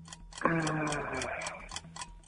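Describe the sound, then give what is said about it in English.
A timer for a number-guessing game question ticks in a quick, steady rhythm, about four ticks a second, while a sustained, harmonically rich tone swells over the middle stretch and then fades, leaving the ticking alone. “I'm doing the timer now as well.”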